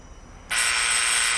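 A doorbell buzzer at a house door after dark starts abruptly after a brief quiet moment and holds a loud, harsh, steady buzz until the end, with no one speaking.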